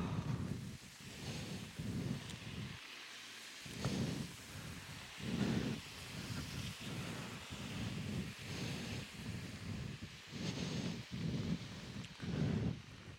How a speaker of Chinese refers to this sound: 上个礼拜也是下雨，这礼拜也是下雨，觉得这两周都泡在水里啊，实在是有点累。